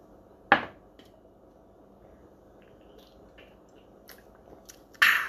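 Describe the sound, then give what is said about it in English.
A shot of liquor being taken: a sharp glassy knock, then a few seconds of faint handling and swallowing sounds, ending with another loud abrupt burst. No one speaks. “Oh, first a shot.”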